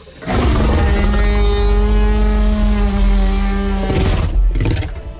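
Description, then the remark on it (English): A dragon's monstrous, otherworldly shriek blares loudly for about four seconds, a steady droning tone over a deep rumble, then breaks into two shorter, harsh bursts. No one speaks. “And just as you say that, there is an otherworldly shriek.”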